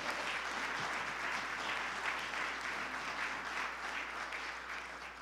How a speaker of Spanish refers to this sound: Si lo cree, dar un aplauso fuerte, Señor.